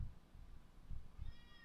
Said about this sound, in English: Uh-oh, there's the cat screaming at me.